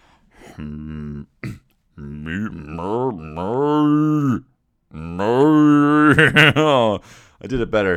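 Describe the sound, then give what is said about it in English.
A person imitates a cow with several drawn-out, wavering moos, voiced fairly loud, separated by short pauses and a sharp breath. “I did an impression of a cow, and it was so good that my mother-in-law, this is no word of a lie, 2 days ago, said, oh my goodness, that's incredible, that sounded exactly like a cow, right?”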